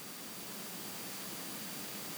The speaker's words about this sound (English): So what he did is he created in these headphones, it's white noise.